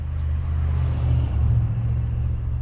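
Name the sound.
bus engine rumbling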